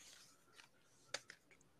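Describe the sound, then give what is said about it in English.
Soft, scratchy shuffling made by a person recreating a shuffling noise: a quiet rustle building into a few brief scrapes and light clicks, with one sharper tap partway through and no voices. “Just imagine we heard shuffling behind the room.”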